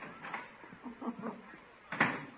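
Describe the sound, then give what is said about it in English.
A door shuts with a single thump near the end as a man leaves for the office, after a couple of seconds of soft shuffling and handling noises. “I hardly get in the door and Unc leaves for the office.”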